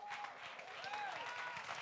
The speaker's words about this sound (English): In Jesus' name, let's give the Lord a great hand clap.